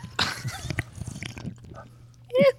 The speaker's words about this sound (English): I'm gonna sip a little drink here for the recording so that you can hear me taking my birthday swill. Ready?